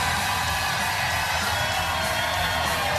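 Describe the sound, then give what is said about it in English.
A loud, steady roar of a crowd cheering at the live Preston and Steve Show broadcast from Keenan's in North Wildwood for the official opening of the Jersey Shore, with whoops and yells rising out of the dense wash of voices for the full three seconds. “We're just on Fox 29, and the crowd's going crazy.”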